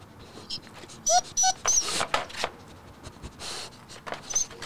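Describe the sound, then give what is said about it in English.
A female dog, Coffee, sniffs at a microphone, whimpering in several short, high-pitched whines, mixed with sniffing and snuffling noises and light rustling. The whines come in quick bursts with brief gaps between them. “She just wanted to sniff the mic.”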